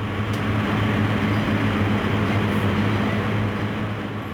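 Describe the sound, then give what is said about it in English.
Steady, loud industrial rumble from a coal power plant turbine room, where pulverized coal is burned to boil water into steam that drives turbines to produce electricity; a dense roar with a constant low droning hum running underneath, unchanging throughout and with no voices. “Inside, our guide leads us down passageways and past heavy doors to the turbine and combustion rooms.”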